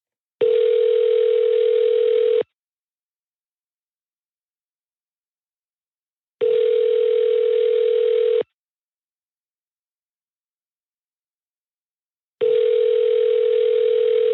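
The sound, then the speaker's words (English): A US telephone ringback tone, as heard when calling a number in the U.S., repeats three times, each steady two-second buzz separated by about four seconds of silence, clear with no voices. “It's just what it sounds like to call a number in the U.S.”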